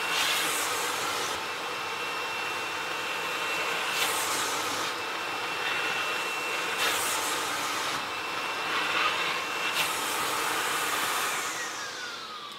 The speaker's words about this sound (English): So we're going to use our vacuum cleaner. I'm using the wider spade at the moment because we're doing less detailed work, and essentially going to just gently, in sections, vacuum the curtain down.